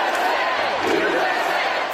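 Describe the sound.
A crowd of about 5,000 Trump supporters cheers and shouts together at an indoor Trump campaign rally in a warehouse outside Las Vegas, Nevada, a dense, steady roar of many voices that stays loud for the full two seconds.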